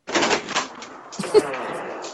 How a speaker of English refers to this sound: That was the creaky door. Like, I was wondering what on earth that was. Like, who's throwing stuff around? What's going on? That was me just letting the dogs out.